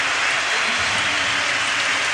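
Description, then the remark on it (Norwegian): A large crowd at Stamford Bridge applauds captain John Terry, number 26, as he leaves the pitch in the 26th minute, in a dense, steady roar of clapping that stays loud and even throughout, with no pauses or distinct voices standing out. “Tar imot hyllesten og ovasjonene.”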